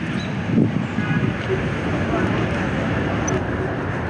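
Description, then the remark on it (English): A steady, low rumble of city traffic on New York's High Line, on 10th Avenue by the Hudson River, in autumn, fills the air without letup, a dense continuous wash of road noise with no distinct vehicles standing out. “You could be 1,000 miles from any city if it wasn't for the noise of helicopters. Traffic.”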